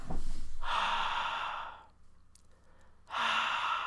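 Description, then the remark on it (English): A voice imitates soft heavy breathing heard over a phone call: two long, breathy exhales separated by a quieter pause, with a hissy, airy texture and no words spoken. “Just heavy breathing.”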